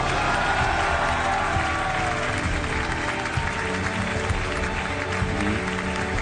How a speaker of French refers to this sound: Voilà donc Lionel Messi sous les applaudissements. Lionel Messi qui remporte pour la 7e fois le Ballon d'Or.